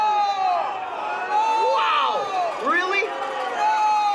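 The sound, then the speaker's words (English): A crowd at a pro-pipeline rally booing and jeering speakers over their remarks, loud and sustained, with overlapping shouts that rise and fall in pitch throughout. “Now, we can argue the merits of them being booed for their remarks all day.”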